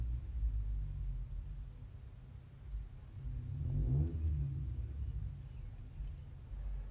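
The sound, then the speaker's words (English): A souped-up car's engine rumbles low and steady as it pulls in, then swells into a throaty rev midway before settling back to a deep idle. No one speaks. “Like right now, I'm seeing people's cars pull in that are souped up”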